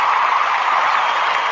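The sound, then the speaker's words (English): A brief burst of crowd applause, a dense, steady wash of many hands clapping at an even loudness, with no voices over it. “I should get some applause going.”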